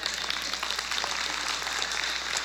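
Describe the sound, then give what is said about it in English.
Steady applause from a crowd, a dense wash of many hands clapping at once, fairly loud and continuous throughout with no voices standing out. “Don't give me applause, because guess what?”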